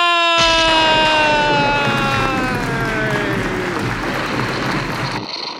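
Loud, dense audience applause rushes in and holds steady for about five seconds, with a bright tone sliding slowly downward over it, then the clapping cuts off abruptly.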